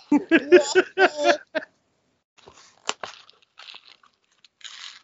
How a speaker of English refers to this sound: Here, let's hear the joy of a child eating Nerds in this non-rigged contest.